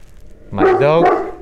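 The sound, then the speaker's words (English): A single bark from the dog Max, loud and slightly drawn out, with a strong harmonic tone before trailing off. “My dog Max is being jealous of me right now. He is vigilant of my safety.”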